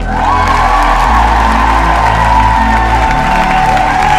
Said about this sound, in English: Thank you. Yes, thank you. Added a little applause there for myself, but let's get straight into this.